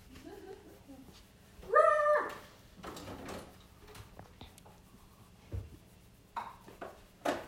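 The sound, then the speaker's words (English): A single sharp bark from Snowy, a big dog, fairly loud, followed by quieter scattered clicks and rustling, with no further barking. “When I petted her, she stopped barking.”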